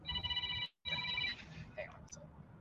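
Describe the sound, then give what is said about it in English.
A telephone rings in two bright, buzzing bursts split by a short silence, with a low murmur of background noise underneath and faint sounds trailing after the second ring. “It's the bat phone.”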